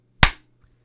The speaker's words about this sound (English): All right, when you're ever ready, grab it, give us a big clap. A big one. One of each gone. Mini clap. Big clap. Mini clap.